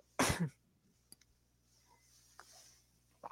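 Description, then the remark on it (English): A single stifled sneeze, held back while taking a drinking shot after a toast, bursts out short and sharp, followed by near silence with a few faint clicks and rustles. “Girl, I was afraid I was going to sneeze and I took that shot.”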